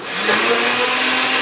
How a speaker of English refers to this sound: Can I blend this before you start? Absolutely, start blending.